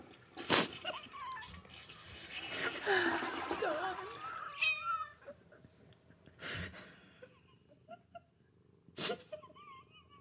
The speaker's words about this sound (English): You did tell me, and then the cat came in and started meowing